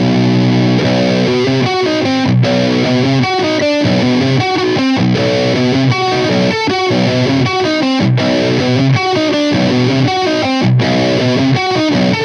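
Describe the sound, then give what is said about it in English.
A heavily distorted electric guitar in a lower tuning, run through the Friedman and into a Black Russian Muff fuzz pedal, plays thick, chunky chords and riffs with a few brief pauses, loud and steady with no talking. “So I noticed you have like the Friedman, and then you have it going into the Black Russian Muff.”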